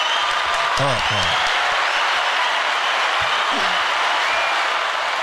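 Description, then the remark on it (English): A small group claps steadily in a dense, continuous patter of applause, with a couple of brief voices cheering or calling out over the clapping. “Let's give that a round of applause.”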